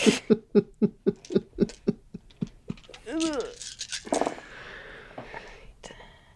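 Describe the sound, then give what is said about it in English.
Dice rolled for a strength and brawl roll, coming up four successes, clatter in a quick rattling run of about a dozen sharp clicks over two seconds, then a short voiced murmur and soft rustling noise. “I gotta get more dice to roll that.”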